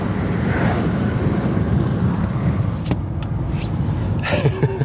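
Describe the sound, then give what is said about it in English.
Steady, loud low roar of wind buffeting a moving car with the window up on a windy, sunny 60-degree evening as the sun sets, with a couple of brief gusty swells and faint rattles near the end; nobody speaks. “That was the wind.”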